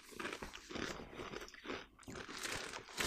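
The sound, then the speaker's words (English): Loud, dense crunching of Tim's kettle chips being chewed, a rapid series of crisp, crackly bites with bright high-frequency snaps and no talking. “And, like, the crunchiness of the chip is great.”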